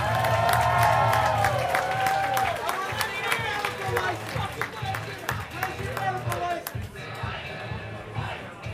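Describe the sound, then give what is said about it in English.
A crowd applauds loudly and steadily as a ringside doctor is introduced, dense clapping running the whole length, with shouts and cheering voices mixed in and a few sharper claps standing out near the end. “Big round of applause.”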